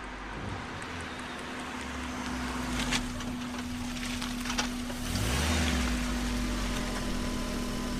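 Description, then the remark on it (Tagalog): A car engine hums steadily, then swells and shifts pitch partway through as the vehicle, a borrowed car driven by a newly licensed driver, drives up and slows, its low rumble continuing to the end. No one speaks. “Kaninong sasakyan niyang dala mo?”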